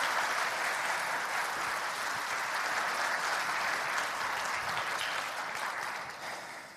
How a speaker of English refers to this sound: Incredible story. Would you guys give him a round of applause? Thank you so much for sharing that.